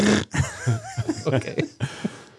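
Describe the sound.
A person imitates a zebra call with a rapid string of rough, raspy barks and wheezy honks, uneven in rhythm and fairly loud, sounding almost like choking.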